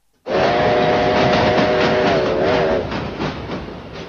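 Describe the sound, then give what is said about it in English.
A train clock chimes with a train whistle that sounds a steady multi-tone blast for a few seconds over rumbling, rhythmic clickety-clack of wheels on rails, which keeps rolling after the whistle stops. “Train clock.”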